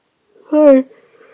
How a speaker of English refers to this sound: I am not drinking because I was afraid if I had anything to drink, I'd literally fall asleep on the podcast as I have an extensive yawn.